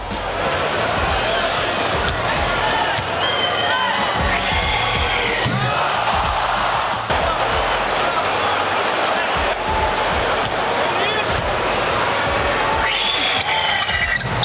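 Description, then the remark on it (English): A girl's shrill, high-pitched screams rise several times above the steady roar of a loud NBA arena crowd as the Raptors go to the free throw line, with cheering and the thud of bouncing balls underneath. “Right, that scream you heard, every single time the Raptors went to the free throw line, she screamed exactly like that.”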